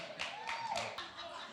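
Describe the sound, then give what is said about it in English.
A crowd claps together three times in a quick, even rhythm, each clap a sharp burst from many hands, with faint voices and room noise in the background. “Three claps.”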